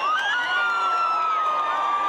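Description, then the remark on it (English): Crowds lining the streets in Venezuela cheer and shout continuously as Guaido drives past on his return, a dense wall of voices with high whoops and whistles rising over the steady roar. No single words can be picked out. “He drove past crowds of people lining the streets to welcome him back and to protest.”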